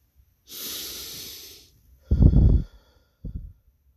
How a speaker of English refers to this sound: In and out. And appreciate those breaths.